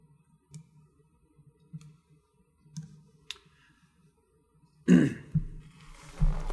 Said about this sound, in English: After a long reading, I always need to have a zip of water.